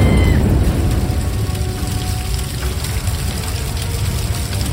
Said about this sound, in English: Then the car explodes.